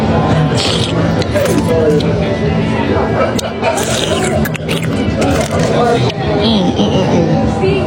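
Loud, wet slurping and smacking from someone eating, continuous and dense for several seconds, with scraping, sucking noises that barely let up from start to finish.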